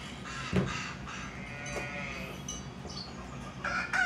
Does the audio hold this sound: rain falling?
no